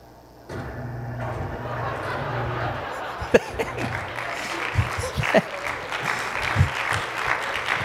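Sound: audience clapping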